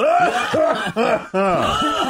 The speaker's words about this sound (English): Pretending to be sick by faking a cough so the other person doesn't initiate the handshake.